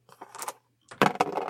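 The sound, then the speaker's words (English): Dice clatter across a hard tabletop in two quick bursts of bright, rattling clicks, the second louder and busier than the first, with no talking; players roll three and two dice during a tabletop role-playing game. “How many dice each rolling?”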